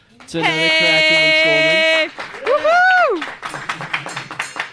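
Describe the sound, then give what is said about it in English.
A long, steady sung or hummed note and a rising-and-falling whoop, then a short run of irregular hand claps for the intro of the Mac Brown Show, fairly loud and uneven in rhythm. “That was preemptive of the intro clap, guys.”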